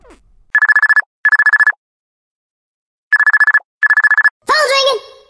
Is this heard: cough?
no